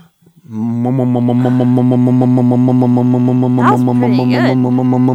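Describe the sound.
A voice imitates the hypno-toad with a low, steady, buzzing drone held for nearly five seconds, faintly pulsing, its overtones wavering and rising briefly toward the end.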